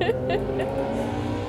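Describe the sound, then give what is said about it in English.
A group of motorcycle engines rev and rumble loudly outside, a thick, continuous growl with brief throttle surges as the bikes roll past. “You've got like a gang of motorcycles.”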